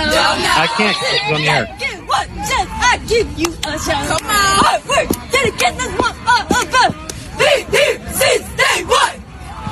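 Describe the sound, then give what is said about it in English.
A cheer squad shouts a loud, energetic chant in rhythmic bursts, with yells and whoops mixed in. “It's a cheer squad.”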